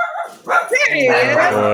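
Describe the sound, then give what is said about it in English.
A small male dog barks in a quick burst of loud, high-pitched yaps that run together, with a whiny, strained edge toward the end. “one last thought on that is, sorry, my dog's barking.”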